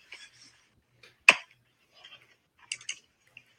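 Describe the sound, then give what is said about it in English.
A few sharp, dry clicks of a MacBook key, the button for its voice recognition function, pressed several times at uneven intervals, with one louder snap among softer taps, and faint rustling between them. “Like, I'm literally clicking it and it doesn't even.”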